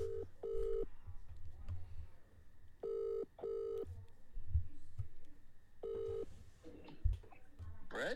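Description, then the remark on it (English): A phone call to the caller's father on a Sunday ringing out, the familiar double-burst ring tone repeating three times at a steady pace, clear over a low background rumble. “Why am I being called on a Sunday?”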